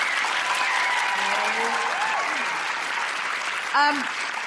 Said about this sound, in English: Big round of applause